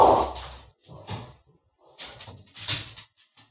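Guard dogs bark in a loose string of sharp, fairly loud bursts with short pauses between them, no one talking over them.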